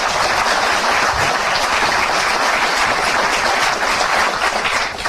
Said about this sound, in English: That's outstanding. That's something that deserves to be applauded.